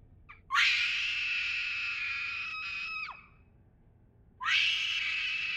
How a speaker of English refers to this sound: Komal could now scream, and she let the full force of her terror bounce against the walls of the cave.